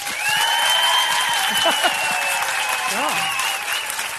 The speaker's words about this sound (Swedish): Okej, då är det alltså upp till publiken att bestämma vem som ska få akademikernas hett eftertraktade goodiebag. Och då gör vi väl så här att ni som röstar på tjejen med prickigt hårband och vit tröja klappar nu.